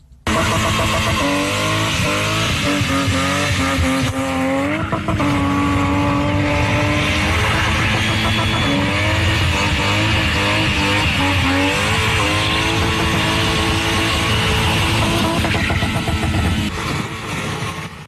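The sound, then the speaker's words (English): The car of spinner Stacey-lee May spins with its engine revving hard and tires squealing continuously, loud, the engine pitch rising and falling through the maneuver with no talking. “All right, that is your car, Stacey-lee May.”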